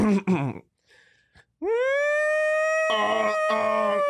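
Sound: voice imitating a siren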